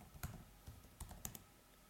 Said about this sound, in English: We're not typing it right, dude.